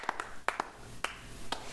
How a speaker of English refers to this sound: You got to find a better clap, though. That's I do. I do have one, but I don't want to look for it right now. I could always play this one.